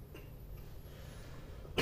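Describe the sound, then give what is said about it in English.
A quiet stretch of low background rumble, then one sharp, loud cough bursts out right at the very end, cut off abruptly. “Oh, you said you weren't coughing.”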